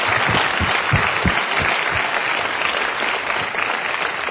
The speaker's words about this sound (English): Really quick, if we can get a round of applause for our Public Research Institute. They're the folks that put all this together. They did a fantastic job.